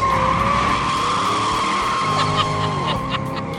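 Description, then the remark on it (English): A 1967 Chevrolet Stingray does a burnout, tires squealing in a loud, sustained screech over a roaring, revving engine, with a few sharper chirps near the end. “there's a video of him doing burnouts with Jay Leno in his 1967 Chevrolet Stingray”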